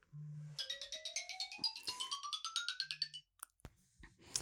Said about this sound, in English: Oh, my God, I'm getting a phone call.